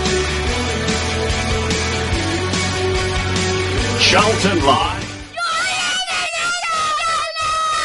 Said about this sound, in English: Charlton Live. So you heard the mascots from yesterday's game shouting as loud as they could into the microphone.